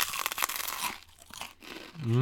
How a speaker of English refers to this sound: Wow. You make good matzah. Crunchy, right? And salty. It's a little salty. It doesn't taste anything like cardboard.